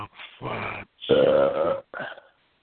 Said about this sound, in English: I'll fucking burp in your face and I'll take your girl and put it under my armpit and walk away.